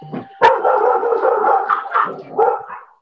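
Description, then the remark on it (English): A dog barks and yelps loudly at someone ringing the doorbell, starting with a sharp burst and carrying on in a dense, excited run of barks for a few seconds, with no one speaking. “Dog attack. Sorry. Didn't know somebody was going to ring my doorbell.”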